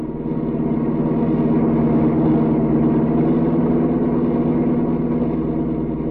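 A car engine drones steadily and loudly throughout, a continuous motor hum with rough mid-range harmonics and no voices, as the car races down the mountains.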